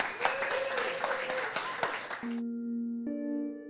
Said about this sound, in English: So give him a big round of applause, please, Mr. James Nestor.